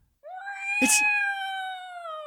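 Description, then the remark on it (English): A single long, drawn-out, loud cat meow in a quiet house, holding a steady wailing pitch that sags slightly toward the end, with a brief scratchy burst near its start. “That cat!”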